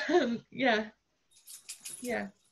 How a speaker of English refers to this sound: That's a puppy.